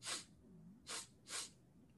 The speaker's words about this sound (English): Othello releases Constance and goes to exit. He stops, sniffs the air.